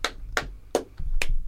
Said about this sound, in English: Oh, one clap.